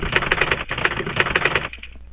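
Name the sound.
typewriter typing sound effect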